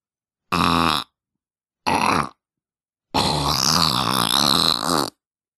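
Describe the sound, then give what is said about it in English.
A voice imitates farts with the lips: two short sputtering blurts, then one longer, louder buzzing raspberry lasting about two seconds, with no talking. “This isn't even a real fart. It's just my lips.”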